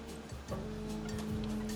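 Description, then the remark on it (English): Waves wash over a pebble beach at Brighton, UK, on a sunny summer day, in a steady, hissing surf, with a low mechanical hum running underneath throughout. No one speaks. “But I'm back in the UK now, down on Brighton Beach, and it is absolutely delicious.”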